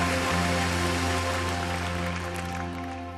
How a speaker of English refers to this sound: Why don't we give God one great clap also? He is worthy of all our praise, all our worship.